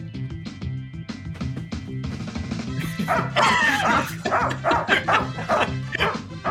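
A dog named Barbie barks rapidly and excitedly, loud, with repeated yips over music with a steady beat, scared by a man dancing in a Blues Brothers jacket, hat and sunglasses while someone restrains her; the barking grows more intense in the second half.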